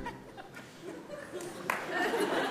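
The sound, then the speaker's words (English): A single sharp hand clap rings out from a small audience, followed by a swell of murmuring and light chuckling from the crowd. “Thanks for that one clap, everyone.”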